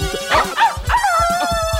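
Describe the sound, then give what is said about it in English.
Several dogs bark and yip in quick, overlapping bursts, with high whiny yelps mixed in, fairly loud throughout. “Oh, I missed that interesting part because of those dogs.”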